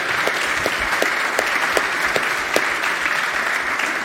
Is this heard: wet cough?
no